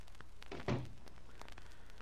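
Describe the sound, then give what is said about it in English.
A door closes with one short, muffled thud and a brief rattle, fairly soft against a faint steady hiss. No one speaks. “And close the door after you.”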